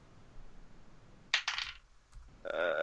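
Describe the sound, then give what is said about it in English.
A small ten-sided die clatters onto a hard table, giving a sharp first impact followed by a few quick bouncing rattles before settling, with a faint ringing tail. “either Steve or Tyler can roll. I've rolled a lot of dice so far. I, so I just need a 1d10 roll.”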